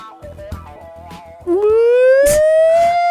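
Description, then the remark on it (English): A loud siren-like wail abruptly starts and climbs steadily in pitch, holding strong to the end, after a brief stretch of quieter, muffled clattering sounds. “Is it a roller coaster or a siren?”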